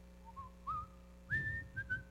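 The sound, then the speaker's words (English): Someone whistles an old hymn tune, a slow, simple melody, a few sustained notes gliding upward and holding, clear over a low steady hum, with no talking. “He said, I was just whistling one of the old hymns, you know, whatever it was.”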